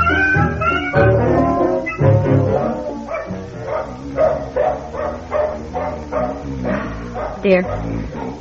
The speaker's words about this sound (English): Brownie has barked and barked all night.